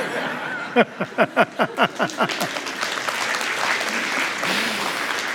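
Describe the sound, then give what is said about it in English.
Audience applause opens with about eight loud, evenly spaced claps in unison, then dissolves into a steady, dense wash of clapping with a few faint chuckles mixed in. “I know you're clapping because it's a good story, not because you think I'm the smartest guy in the room.”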